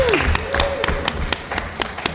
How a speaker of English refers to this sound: Thank you, and I'll take the applause for my new little first granddaughter.